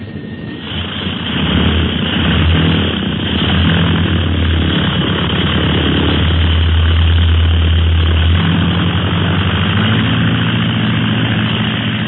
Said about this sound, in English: What a beautiful takeoff. The plane is like a bird.